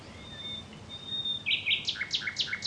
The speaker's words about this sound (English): The song of a nightingale is one of the most beautiful and distinctive songs in the bird's world. It's one of the most complex songs. Nightingales have about 300 songs in their repertoire